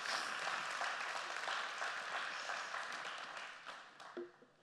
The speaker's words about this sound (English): Come on, let's do, clap it in. Let's agree. Let's release this today together as a family.